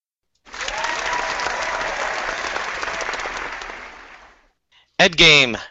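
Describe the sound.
Steady applause from a group rises quickly, holds for several seconds, then fades away before a voice begins speaking at the end.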